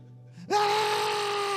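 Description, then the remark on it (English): An adult voice imitates a child's screaming meltdown: a brief low murmur, then a loud, sustained, high-pitched wailing cry that holds steady for over a second. “Tiff's standing in the hallway, and the one thing Tiff has always hated is our kids screaming like that.”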